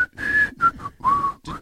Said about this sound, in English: The best and the worst part is the whistle. That will be stuck in my head forever.